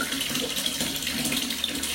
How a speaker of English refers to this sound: And through those thoughts, whether it's the silence, the sound of the bath water hitting the thing, and hitting the water, and the pounding of the faucet on the water reverbs into your chest from your back as you're laying down trying to relax.